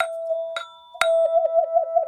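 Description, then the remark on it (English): A toy vibratone chime is struck three times, each clear metallic note ringing out, the last one sustaining with a steady, wavering vibrato that pulses in volume. No voices are heard. “Do you know these ones? Vibratones.”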